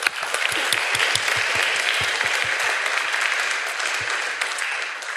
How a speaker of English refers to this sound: Give a round of applause, folks.